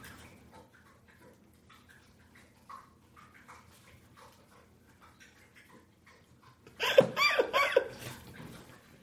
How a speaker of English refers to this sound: Listen. She's not snoring. Yeah, she's thirsty. I want to see how long she'll drink water.